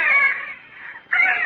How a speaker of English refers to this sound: One of the babies wailed in fright, and the chant began.